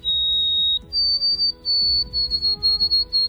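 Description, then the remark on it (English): A white-throated sparrow sings clear, pure whistled notes: one long steady tone, then a step up to a higher pitch held through a series of repeated notes, over a low rumbling background. “Take today's featured feathered friend, the white-throated sparrow.”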